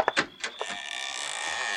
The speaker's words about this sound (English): That door don't sound like it's ever been opened.